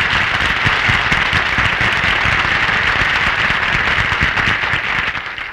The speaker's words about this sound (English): Folks, it's Mel Blanc. Give him a big hand.